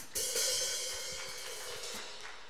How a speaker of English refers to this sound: So if you're a guest with us, can we give a round of applause for everyone today?